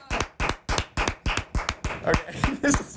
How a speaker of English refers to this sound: And for now, let's listen to the loudest clap in the world. Mine is louder.